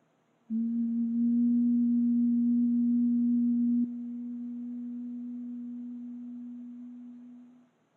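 A single steady, low, gentle vocal hum holds one pitch for about seven seconds, fairly loud. Partway through it drops to a softer level, then fades out gently at the end.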